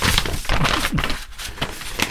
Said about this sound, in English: I'm just reaching for my paper notes now. So I'm going to be doing a lot of rustling today.